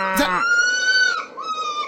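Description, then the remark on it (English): A fox's shrill, wailing scream from foxes mating, loud, holds for over a second, then breaks into a second strained, quavering cry with no other sounds around it. “That's foxes. It's foxes having a...”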